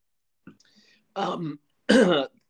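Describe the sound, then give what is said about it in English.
A soft gulping swallow followed by two rough, voiced throat-clearing bursts, each lasting under half a second, with the second one louder and harsher. “Sorry, I apparently swallowed.”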